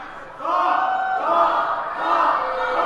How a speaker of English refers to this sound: Everyone's cheering for Hank and not for Doc. Can we get a cheer for Doc?